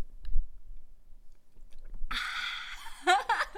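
Exaggerated ASMR mouth sounds: a faint click, a quiet pause, then a burst of wet, hissy smacking and slurping with a brief squeaky sweep near the end. No talking.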